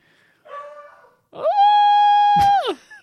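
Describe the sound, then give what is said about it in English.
A dog named Thumper gives two loud, drawn-out barking cries, a short one and then a longer sustained howl that rises at the start and drops away at the end, with no talking. “the dog was telling you, don't do it.”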